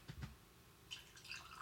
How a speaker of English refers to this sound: has poured the hot water into a glass of. How much was it? A teaspoon worth of salt?